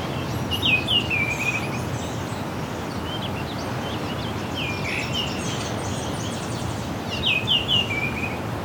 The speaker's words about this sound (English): talkative orioles.